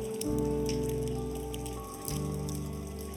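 A thin plastic second-layer seal is peeled off a small communion cup, making a steady, crackly crinkling that runs for about three seconds over a low, constant hum, with no one speaking.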